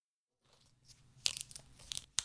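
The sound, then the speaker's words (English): The plastic cap of a Smart Water bottle is twisted open, giving a run of sharp crackling snaps, one loud crack and several quicker clicks, then a final crisp snap as the seal breaks. “So we're going to crack the water for you.”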